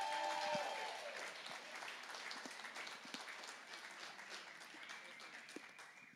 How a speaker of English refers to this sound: three amazing women at our church, all who are moms and all who have something on their heart that they want to share. So will you please give a big welcome and applause to